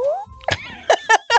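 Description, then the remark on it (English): A voice imitates the whistling whoosh Spider-Man makes swinging through the air: a short rising whistle glide, then four quick buzzy, raspy vocal bursts, fairly loud. “You know that whistling sound a Spider-Man makes when it goes through the air?”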